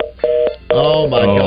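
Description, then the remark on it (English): A steady electronic phone-line tone hums for a moment, broken by a couple of sharp clicks as a caller's call drops, before voices come in talking over it. “They just hung up. But … didn't. They just hung up.”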